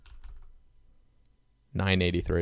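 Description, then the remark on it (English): Soft, scattered clicking of keys on a computer keyboard, quiet, for a couple of seconds before a loud voice cuts in over it. “What the hell am I typing?”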